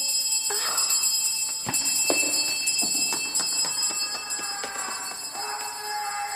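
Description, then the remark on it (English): A bell rings continuously with a bright, high, sustained tone, while scattered knocks and clatter sound beneath it. No one speaks. “Why does it keep ringing?”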